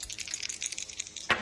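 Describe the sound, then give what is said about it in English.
Dice being rolled clatter and rattle in a quick series of light clicks, ending with a louder tumble as they come to rest, with no talking. “Well, you need to pick an odd or even when we roll the dice here.”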